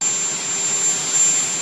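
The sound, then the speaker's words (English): A loud, steady helicopter engine roar with a thin high-pitched turbine whine running through it, continuous with no pauses and no voices. “Can helicopters be more unpleasantly loud? Like, them motherfuckers are crazy loud.”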